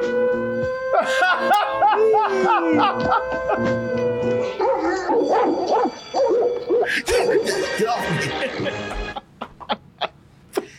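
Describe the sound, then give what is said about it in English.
Several dogs in a movie clip being played bark and howl in a loud, chaotic cluster, with long wavering howls giving way to sharp overlapping barks before trailing off into a few scattered faint sounds. “He's been looking brave and everything except when them dogs came out.”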